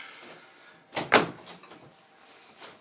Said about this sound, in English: Come in, close the door.